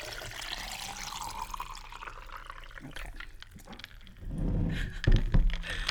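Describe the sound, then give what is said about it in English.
Water pours into a glass, a broad liquid rush that swells louder near the end, with a few clinks and knocks as it lands on ice. “Well, ice, I'm gonna pour some water”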